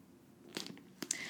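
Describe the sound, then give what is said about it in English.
Thin pages of a physical Bible being turned while looking up a passage in Jeremiah: two quick papery rustles and flicks, each a short crisp burst, quiet overall with no voices. “Y'all hear my tech pages turning. I'm trying to use my physical Bible.”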